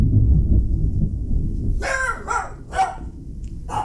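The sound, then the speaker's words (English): A deep, low rumble of thunder from a Midwestern winter thunderstorm fills the opening, then a frightened dog lets out four sharp, high-pitched barks or yelps in quick, uneven succession. “Unfortunately, it has terrified my dog. So sorry about that.”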